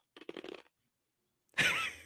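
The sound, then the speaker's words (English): Chewing on ice: a short, low, muffled sound, a brief pause, then a loud, harsh crunching burst lasting about half a second. “I was chewing on ice.”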